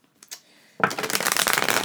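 A deck of cards is shuffled for a card reading, a fast rippling riffle of crisp flutters that runs steadily for about a second after a couple of soft taps and a brief quiet pause.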